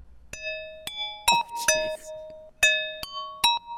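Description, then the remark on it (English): Dry synth ice bells from a preset play a sparse melody of bright, glassy tones, each with a sharp attack and a short ring that stops quickly, with no reverb tail. The Valhalla Vintage Verb, ping-pong delay and EQ are turned off. Some soft noisy clatter sits between notes. “So I have these ice bells.”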